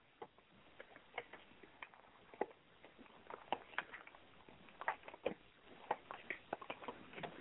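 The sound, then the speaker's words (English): Tarot cards being shuffled, a quiet run of irregular papery ticks and soft slaps with a few sharper snaps scattered throughout, no voices present. “I'm not just shuffling the cards. That's what I'm doing. That's what you're hearing.”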